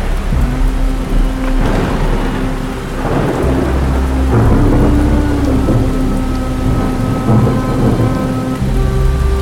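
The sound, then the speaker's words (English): A thunderstorm with steady, heavy rain hissing throughout and deep rolls of thunder rumbling in the low end, loud, with no voices. “There's a storm coming.”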